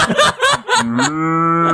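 A cow's loud, drawn-out moo, a single low, steady bellow lasting over a second, preceded by a few short, breathy bursts of noise.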